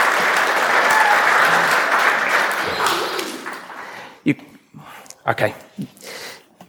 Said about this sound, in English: Give them a round of applause for being out.